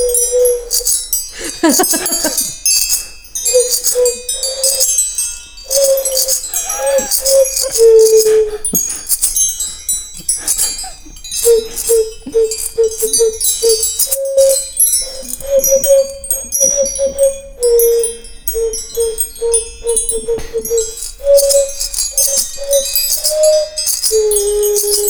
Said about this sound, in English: The chimes at Cooler Gallery will be pretty long, like 10 inches to maybe 25 inches, if I can figure out how to fire the 25-inch ones vertically. And so they make these really nice, like, microtonal sounds, just like this